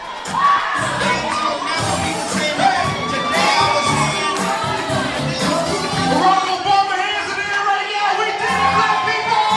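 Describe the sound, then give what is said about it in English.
A large crowd at the House of Justice in Harlem cheers and shouts into the night as Barack Obama reaches 270 Electoral College votes and becomes President-elect; high excited voices and whoops overlap in a loud, dense roar that holds steady with occasional rising yells. “And at the House of Justice in Harlem, people were cheering into the night.”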